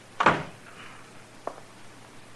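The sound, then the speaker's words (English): A door swings shut with a solid thud as Chester shuts it at Matt Dillon's order, followed by two small latch-like clicks spaced about a second apart. “Shut the door, Chester. You can go out or stay in, but shut the door.”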